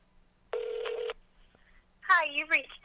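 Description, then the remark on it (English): A single half-second ringback tone, the fifth ring of an outgoing phone call that goes unanswered, steady and moderately loud through the line, followed after a short pause by a voicemail greeting starting to speak. “Five ringy dingies.”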